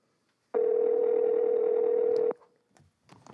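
A loud, steady telephone dial tone while placing a call to Tennessee holds for nearly two seconds, then cuts off abruptly, followed by a few faint clicks and soft rustling.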